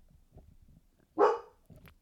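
A dog gives a single loud, sharp bark that stands out clearly against a faint, low background rumble, then fades quickly.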